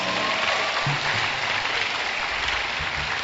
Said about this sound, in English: Clap for Jesus.